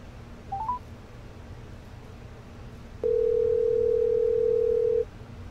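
A few quick dialing beeps sound near the start as a phone call is dialed, followed by a single steady tone that holds for about two seconds before cutting off, all over a low background hum. No one speaks.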